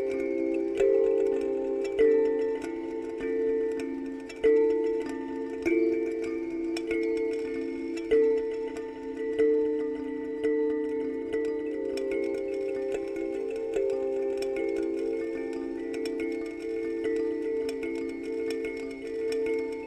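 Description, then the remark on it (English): Ambient modular synthesizer patch built from kalimba samples on a Morphagene, with Plaits noise, Moisturizer textures and Desmodus Versio reverb, the Organize modulated by a Pico RND sample and hold: warm, sustained tonal layers with soft plucked notes ticking through at fairly regular intervals, steady and moderately quiet, with no voices. “Ambient Kalimba Morphagene Patch with Plaits Noise and Moisturizer”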